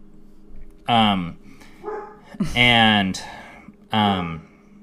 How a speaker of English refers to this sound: Sorry, the dog's barking. Hey, stop!